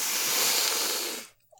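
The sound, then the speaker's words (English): A voice imitates the character Kanonji smelling Kon, a moving stuffed toy: one long, loud sniff, a harsh breathy rush of air lasting just over a second before cutting off abruptly into near silence. “He sniffs them real good.”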